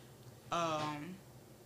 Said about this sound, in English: Bless you.